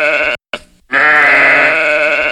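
A sheep bleats loudly, first a short bleat, then after a brief pause a longer, wavering one that holds steady to the end.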